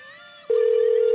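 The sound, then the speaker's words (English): A telephone ringing as a prank call is placed from the called man's own number: a brief buzzy electronic note gives way abruptly to a loud, steady, unbroken ring tone, clear, with no one talking. “Oh, he's ringing from his own number now.”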